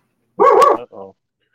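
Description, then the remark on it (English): A dog gives a loud bark followed quickly by a shorter, softer second bark, with silence around them. “Are you done with the barking?”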